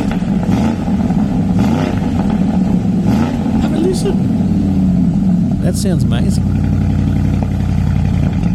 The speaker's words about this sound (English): Have a listen to this, the new 2021 Cayenne GTS. How does it sound? That's normal mode. Sports mode, right? Wow. Nice.